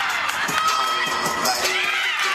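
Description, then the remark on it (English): A crowd and teammates roar and cheer wildly for a UC Berkeley gymnast who scored a perfect score performing a routine in a mask: dense overlapping shouts and high-pitched screams sustained at a steady loud level throughout, with excited voices blending into one continuous wall of noise. “The crowd and her teammates went absolutely wild.”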